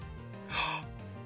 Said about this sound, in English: Gasping noise? Yeah. It's so scary.